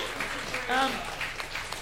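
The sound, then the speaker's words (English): A short burst of applause, a steady dense patter of many hands clapping throughout, with a brief voiced cheer rising over it midway. “Let's just give brave. Him a round of applause.”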